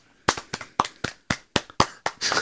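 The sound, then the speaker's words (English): A short burst of brisk hand clapping, sharp, loud slaps in a quick steady rhythm, like one or two people applauding, growing denser at the end with no talking. “But anyways, round of applause.”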